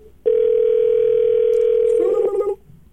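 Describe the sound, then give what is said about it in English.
A phone's outgoing ringing tone from a call placed to a shop to ask about king cakes, sounding once as a loud, steady electronic hum lasting about two seconds, with a faint voice briefly overlapping just as it stops. “It's ringing.”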